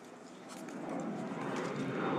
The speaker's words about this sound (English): Wait, do I hear a cargo plane?